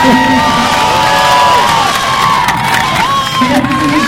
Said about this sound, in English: Illinois, we're in Illinois. Should we cheer for Illinois?